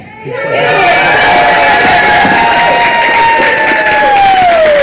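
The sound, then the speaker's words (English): A crowd, including a kindergarten class, bursts into loud, sustained cheering and whooping at a kindergartner's adoption hearing, high voices rising together and holding steady for several seconds, with a long sliding cheer tapering off at the end. “And cheer him on.”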